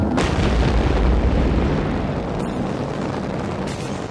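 A rocket ship blasts off after a countdown, roaring steadily for about four seconds, a loud, unbroken rumble heavy in the low end with a crackling hiss on top and a brief rising burst near the start.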